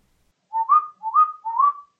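A person whistles three short, rising two-note calls in a steady rhythm, clear and fairly close, with no talking or other sounds around them.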